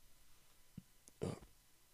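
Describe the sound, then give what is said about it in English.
A soft low thump, then a sharp, gulping hiccup a moment later, with no talking. “Those goddamn hiccups.”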